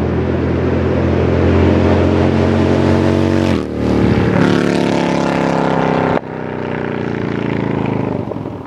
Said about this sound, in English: But before I do that, that sound you just heard, Rico, my bike doesn't sound like that anymore.